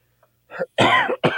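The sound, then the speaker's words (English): A loud burst of harsh coughing, a couple of raspy hacks running together after a short throat-clearing catch, with no talking around it. “My cough will just take me and I'll be done.”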